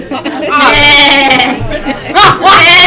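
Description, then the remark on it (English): A person imitates a goat's bleat with a wavering, quavering voice, followed by a couple of sharper, louder bleating bursts near the end, with no other talk. “That just sounds like a goat.”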